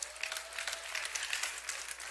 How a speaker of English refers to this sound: You can clap.